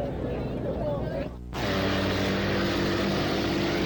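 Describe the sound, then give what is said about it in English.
Five racing boats roar steadily on the course shortly before a race, a loud continuous engine drone with a brief dip before surging back to a constant, heavy hum. “All five boats are out and running.”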